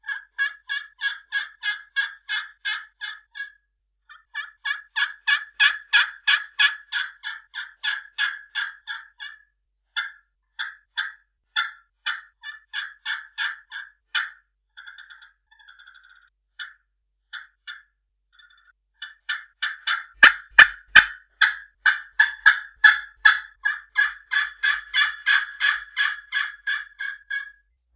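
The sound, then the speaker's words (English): A glass turkey call, not yet conditioned, yelps in long, rhythmic runs of sharp, raspy notes, loud and steady, broken by a few short pauses and softer clucks before another fast series. “So that's a little sample of a few calls on that glass call.”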